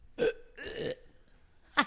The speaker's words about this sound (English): Can you make yourself burp?